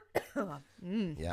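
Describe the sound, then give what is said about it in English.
A single sharp cough bursts out right up close to the microphone, followed at once by a man's voice making drawn-out vocal sounds. “Don't cough into the microphone as we talk about the pandemic.”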